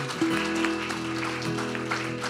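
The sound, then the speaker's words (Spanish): A crowd at a church service claps steadily, a dense wash of hands throughout, with a sustained keyboard tone holding underneath the applause, given as a round of applause to Jesus. “Why don't you give a round of applause to Jesus?”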